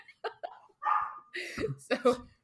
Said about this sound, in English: So the dogs are just barking at nothing. Oh, good. They're barking. Or a ghost.